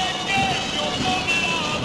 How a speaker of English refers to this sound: Whew, we have to stop, and the road narrows, and here comes the yellow truck.